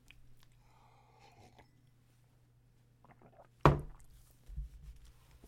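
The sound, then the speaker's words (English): A quiet sip of orange juice, then a sharp clunk like a glass set down and a soft swallow, all over a low steady hum with no talking. “After a sip of orange juice.”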